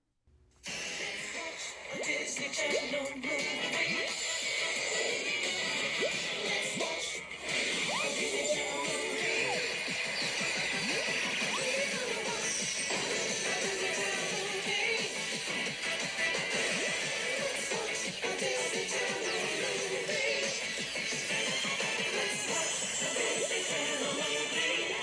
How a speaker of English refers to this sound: And just because I love hearing it, let's play the Disney Channel original movie intro music.